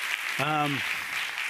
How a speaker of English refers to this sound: So first, how about a round of applause for Media Evolution for putting this thing together? This is so nice, such a nice conference, right?